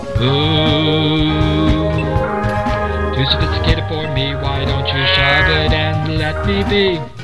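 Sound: cow mooing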